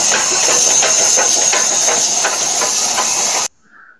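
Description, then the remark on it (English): An approaching steam train chugs loudly, rapid rhythmic chuffs riding on a constant roar of hissing steam, then cuts off abruptly, leaving a brief faint tone. “That's the Biden Express, a tyrannical rule coming at us faster and faster.”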